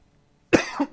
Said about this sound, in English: Whew, there's that cough.